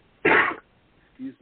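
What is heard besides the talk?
sneeze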